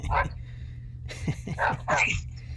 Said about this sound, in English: Can't get a break out here, huh? Bark, bark. Hey, can't you see there's an on-air sign over here?